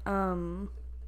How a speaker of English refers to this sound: My straw just squeaked.